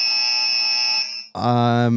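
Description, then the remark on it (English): A quiz buzzer sounds: a loud, steady high electronic tone holds for over a second, then cuts abruptly to a harsher, lower, rasping buzz that continues to the end. “Fingers on buzzers.”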